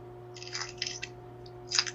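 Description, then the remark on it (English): Wet, smacking chewing sounds of someone eating dinner come in irregular bursts of clicks and squelches, with a louder slurp-like burst near the end, all over a steady low electrical hum. No one speaks. “It's dinner time. We're not offended. I'm like, we slurp and we burp.”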